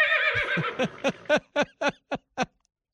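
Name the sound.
horse neighing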